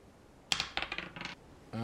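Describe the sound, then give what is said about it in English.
Dice clatter across a hard surface in a quick burst of sharp, bright clicks that bounce and settle over about a second, rolled for an insight check, followed by a voice starting to speak. “Do you have roll an insight check.”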